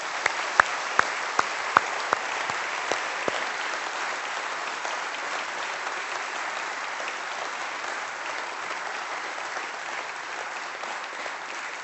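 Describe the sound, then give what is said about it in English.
A church audience breaks into sustained applause to publicly thank someone, opening with a few sharp, separate claps before settling into a dense, steady wash of clapping that carries on evenly for about twelve seconds. “But I thought we'd just acknowledge by giving him a round of applause, thanking him publicly.”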